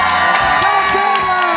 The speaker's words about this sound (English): So big round of applause for Tommy Dazzler.